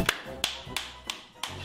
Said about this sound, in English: That's the pizza face clap.